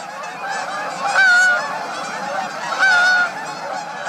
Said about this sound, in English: When do you hear migratory Canada geese flying overhead in the darkening autumn sky?